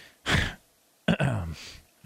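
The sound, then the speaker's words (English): A person clears their throat twice: a breathy rasp first, then a longer, gravelly hawking burst, followed by a short faint click. No words are spoken. “I had to clear his throat.”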